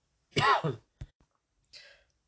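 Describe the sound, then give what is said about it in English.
A single harsh cough bursts out, followed by a short throat-clearing catch and a brief breathy exhale, with quiet pauses between. “Sorry, guys. A little bit of a cough there.”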